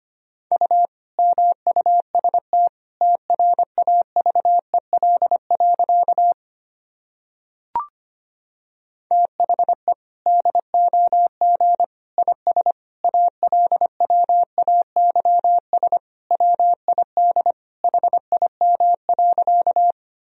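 Steady Morse code at about 25 words per minute: a single mid-pitched tone keyed into rapid dots and dashes, with a short pause and a brief click partway through.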